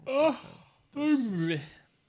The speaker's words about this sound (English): You quit with that yawning shit.